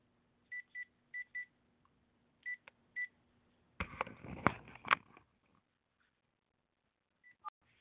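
A quick series of short keypad tones from a regular telephone being dialed to call a guest during a show, about seven beeps in two bursts, followed by a brief stretch of rustling handling noise and a faint click.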